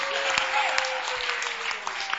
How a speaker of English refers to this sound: And then, how many want to clap for Lady Pastor for moderating also? Moderating star.